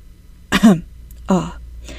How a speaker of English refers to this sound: Halfway through a passionate argument about the nature of narrative, Onyo passed wind. He coughed politely.